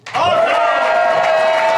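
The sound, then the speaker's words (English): A large crowd at Rhode Island Comic Con erupts in loud, sustained cheering and shouting as panel guests come on stage. A dense roar of many voices with whoops rising over it holds steady for nearly two seconds. “That's an energetic crowd.”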